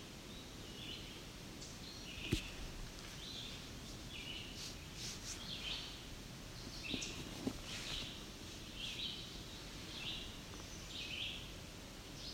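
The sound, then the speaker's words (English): A male chestnut-sided warbler gives a few sharp, scattered tick calls, faint, over a soft outdoor hiss with other high chirps repeating in the background. No one speaks. “Something's ticking. I believe it's our chestnut-sided warbler that's ticking.”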